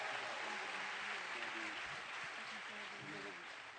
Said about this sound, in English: Yeah, let's appreciate this right here. All right, let's give them one more round of applause as they seated.